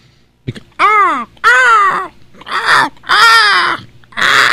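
Five loud, harsh seagull calls in quick succession, each a raspy, wavering squawk that rises and falls in pitch, with short gaps between and no talking.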